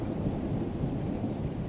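A low, continuous rumble of thunder rolls through steady rain, the deep roar holding a constant loudness with a soft hiss of rainfall above it and no voices.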